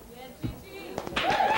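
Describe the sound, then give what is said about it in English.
Audience applause from a singer's fan club in the first two rows swells up in the second half, a dense, steady wash of many hands clapping, preceded by a brief thud and faint murmuring voices. “But the applause, in case you're curious, is coming from a … fan club there in the first two rows.”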